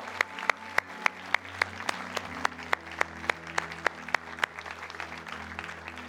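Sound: audience applause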